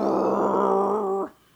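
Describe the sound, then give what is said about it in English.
A voice makes a sustained, buzzing, low-pitched drone imitating the Starkiller Base laser cannon firing a huge beam, holding steady and loud for over a second before cutting off abruptly. “Like, just firing out this huge beam and going...”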